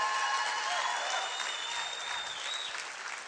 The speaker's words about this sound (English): How many of you all appreciate the pastors of our church? Let's give our pastors a big clap.